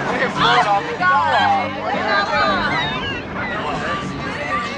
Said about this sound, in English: If you play that part over again, there is a slight screech of a seagull and a crash of a wave, and Chrissie looks over to the water.